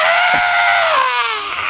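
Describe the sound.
A man lets out a single sustained, high-pitched vocal scream in imitation of a heavy metal wail, loud, with a slight downward slide toward the end, made on opening a can of Trooper beer from Robinson's Brewery.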